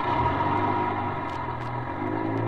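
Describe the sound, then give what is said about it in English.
A passenger bus engine rumbles and drones as the bus pulls out after its first stop, a steady low motor hum with a slight rise in pitch toward the end, no voices. “Waited until the bus pulled out.”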